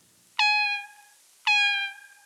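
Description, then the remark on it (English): Two identical bat cries, each a rich, buzzy tone that sweeps quickly downward at the start, then holds steady and fades over about three-quarters of a second. It was used in cross-species playback experiments with female deer. No voices are present. “The bat that we used had a simple descending frequency sound, meow, meow.”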